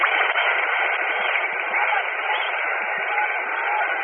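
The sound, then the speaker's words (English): A stadium crowd applauds Brooklyn Dodgers batter Cox as he comes up to bat, a steady, dense wash of clapping and cheering that holds an even level throughout, with a thin, narrow-band tone like an old radio broadcast. “Let's listen to the applause for him.”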